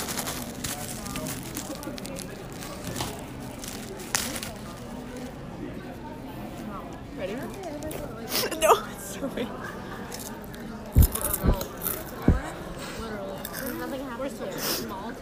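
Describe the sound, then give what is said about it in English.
Someone eats lunch with soft, wet chewing and mouth noises throughout, then a few sharp, loud crunching bites land close together near the end. “Here, I'll do a crunch.”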